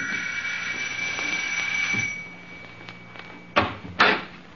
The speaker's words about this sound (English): 10 minutes later, a police car raced up to the house, and the doorbell rang.